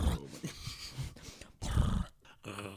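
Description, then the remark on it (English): Bertie, a dog with an undercoat, growls and grumbles in low, rumbling bursts over a few seconds, with short pauses between the throaty sounds. “Oh, Bertie, do you like that noise? Anyone else got a dog with an undercoat?”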